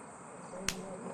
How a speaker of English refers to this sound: Oi, Mozzies is out tonight.